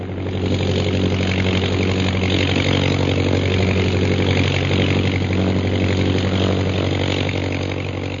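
An airplane motor, turned on while the plane is losing altitude and flying speed over the center of a village, drones loudly and steadily throughout: a continuous low, buzzing hum with a rough, mid-pitched rattle layered on top and no break in the sound.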